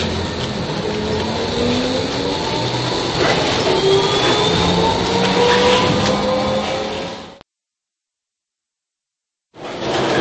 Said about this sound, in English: Now we've changed trams again, and we're now on the line 14, which, as I said, goes over the river towards Sachsenhausen.